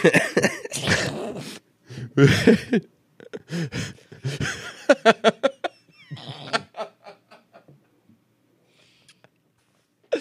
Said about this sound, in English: It's a bad time to mention, but I've been having a cough all weekend.